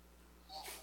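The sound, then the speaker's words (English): A single short, breathy sneeze from someone in the audience bursts out partway through, faint, over a low steady hum with no talking. “Bless you.”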